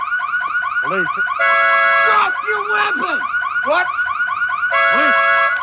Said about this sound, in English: I can't hear you! Let me turn off the alarm!